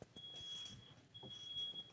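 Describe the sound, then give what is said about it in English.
A smoke detector in an apartment goes off from cooking too hot in the kitchen, sounding two long, shrill, high-pitched beeps separated by a short gap. The alarm is steady and piercing, with faint room noise beneath it. “Oh, I think our smoke detector's going off.”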